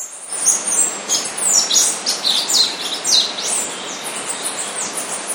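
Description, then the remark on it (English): Dense birdsong fills the mountain jungle of the Sierra Nevada in Tayrona National Park, with many overlapping chirps and trills from several birds, some bright, over a steady hiss of ambient jungle noise; no one speaks. “Here's a quick sound of some bird song in the jungle up there in the national park”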